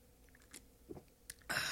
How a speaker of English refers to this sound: That's a loud gulp. Yeah, jeez. It's refreshing.